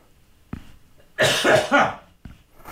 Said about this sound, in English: Why do you have a cough? Did you inhale some drywall dust?